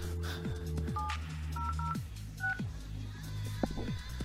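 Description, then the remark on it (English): Four short touch-tone keypad beeps dial in an irregular sequence on a Hamshack Hotline desk phone, dialing up an audio link, clear, over a steady low electronic hum with no talking. “I'm just going to pick a line here on my Hamshack hotline phone, and I'm going to dial up one of the audio links.”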